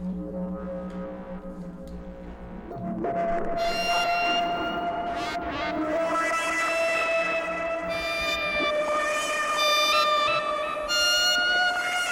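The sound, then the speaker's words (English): Electric guitar played with an EBow through the Mystic effect, producing long, singing sustained notes that swell without a pick attack, starting darker and turning bright and harmonically rich, with no talking. “And a good test of how cool this is to throw an Ebo on it.”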